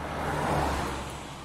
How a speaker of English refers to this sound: Oh, here comes a car.